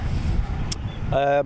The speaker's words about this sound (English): Listen to that boat.